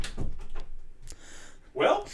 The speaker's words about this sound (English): The door just opened by itself? Yeah. No, it did not. There's no one by it. Are you serious? Did you open this door?